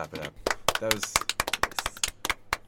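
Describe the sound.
A short burst of hand clapping on reaching the end of a playlist, quick, sharp and somewhat uneven, as if a few people are clapping together, with brief bits of voice mixed in at the start.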